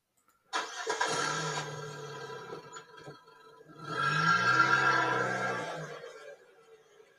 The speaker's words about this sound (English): The ignition turned with ease, and the truck hummed on like it was brand new.